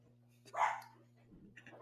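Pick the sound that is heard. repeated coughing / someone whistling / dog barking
dog barking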